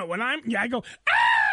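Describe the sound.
A person imitates a loud scream: wavering, strained vocal sounds, a brief pause, then a sustained high-pitched shriek held to the end, loud.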